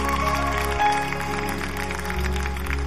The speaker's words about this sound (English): Why don't you clap your hands if you're grateful? Amen. Amen.